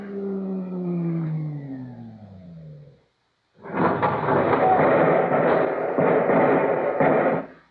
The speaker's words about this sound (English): Wait. There's another car rising in the tube. Stand aside.